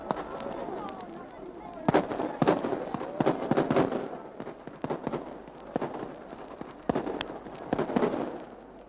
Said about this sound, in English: afterwards, a triumphal feu de joie is fired by a party drawn from the Dublin battalions of the Force de Cosenthal Oituil, successors of the citizen soldiery of Easter Week. Rifle fire crackles down the long line, almost to inaudibility, and returns.